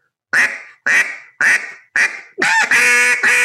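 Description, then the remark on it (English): Four loud, evenly spaced quacks blown on a duck call with the same volume of air, followed by a longer, harsher run of raspy quacking, clear with no voices. “Say, for instance, you know, when I do a quack, I'm using the same volume of air.”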